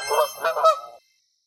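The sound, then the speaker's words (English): A person holds a staff up like a giant flute and blows on it, making a bird-like honking call: three quick, nasal honks run together for about a second, fairly loud, then silence. “Okay, I hold the staff up like a giant flute. And blow on it.”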